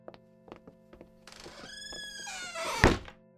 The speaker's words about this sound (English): You knocked it over, didn't you? No, I did not. Come on. It was the wind.